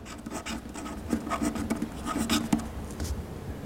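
A pen scratches across a sheet of paper on a wooden desk in a monastery scriptorium in quick, irregular strokes, the dry scraping of someone signing their name, with a faint tonal hum in the background.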